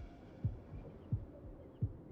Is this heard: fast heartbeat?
yes